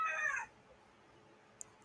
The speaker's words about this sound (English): And see, my chicken agrees. The cult of psychotherapy. Yeah, chicken wasn't his vocal last time, was it? It's like it knows you're recording as well, isn't it?